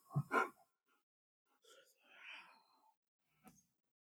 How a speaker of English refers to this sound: If anybody hears heavy breathing